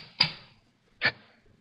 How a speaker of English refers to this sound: I had to know if that diamond was the King Midas. I put the edge of the chisel to one of the cleaving grooves and struck with the mallet.